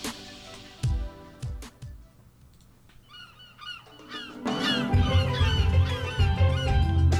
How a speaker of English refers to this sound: Get out of here, seagulls. Get out.